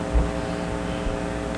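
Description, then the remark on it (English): A steady electrical mains hum drones throughout, a loud, buzzy low tone with layered harmonics that never changes pitch or level, with no voices over it. “Boy, is that hum awful!”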